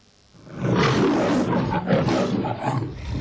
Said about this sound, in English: His roar is so scary. Even though we are 8 kilometers far from him, but we still can hear. ឥឡូវ ចាប់ ដើម លឺ សំឡេង roar របស់ សត្វតោ. So we will listen to roaring of lion.